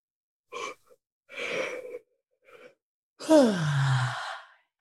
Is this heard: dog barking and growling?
no